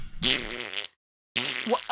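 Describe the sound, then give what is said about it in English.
A voice imitates a fart with the mouth, two loud, close, buzzy raspberry bursts separated by a short silence, with no other talking. “I made a fart noise with my mouth.”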